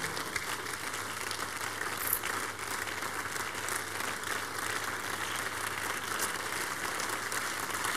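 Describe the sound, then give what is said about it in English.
A standing audience at a revival service claps steadily in praise to the Lord, a dense, continuous wash of many hands with no voices, holding an even loudness from start to finish. “Give the Lord the biggest clap of praise.”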